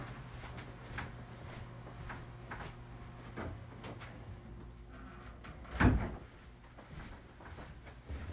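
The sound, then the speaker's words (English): A single solid thud of an office door being shut lands near the middle, distinct against a steady low hum and faint background rattles; no one speaks. “That also gave me a chance to shut my office door since the boiler started.”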